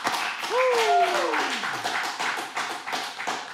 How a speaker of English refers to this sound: Oh man, clap it up for that.